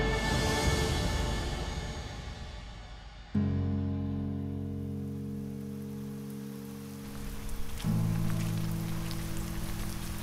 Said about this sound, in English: But it's already raining.